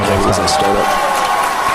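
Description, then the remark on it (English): A large crowd cheers and shouts excitedly at a Falcon Heavy rocket launch, a dense, loud roar of many voices that holds steady throughout, with some individual voices rising above the din. “Listen to the crowd, and it just gets better. They go nuts.”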